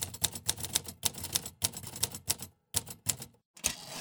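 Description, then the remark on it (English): Rapid mechanical typewriter keystrokes clatter in quick bursts, sharp clacks with brief pauses between runs, fairly loud with no voices. “And my typewriter fit well on the table, next to a pile of books and papers and a big ashtray.”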